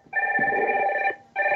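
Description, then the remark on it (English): A phone rings with a loud electronic warble: one long burst of about a second, a brief pause, then the next ring begins. No one speaks. “Alarm or phone?”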